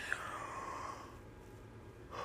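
A long, drawn-out yawn from a speaker, an open breathy exhale with a rising then fading vocal tone, followed by a brief pause and a slight breath at the end.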